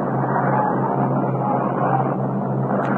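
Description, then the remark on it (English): A steady, continuous engine roar fills the whole stretch, a jet aircraft passing overhead during a baseball game, holding an even loudness throughout with no voices present. “They've got a jet up overhead here.”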